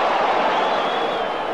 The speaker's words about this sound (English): Musial reaches number 3,000. He's going to make it a double. He goes to second, standing up, and the crowd roars.